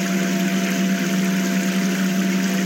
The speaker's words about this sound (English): You keep moving further into the room, towards the dark abyss in front of you, when you notice the familiar sound of water running.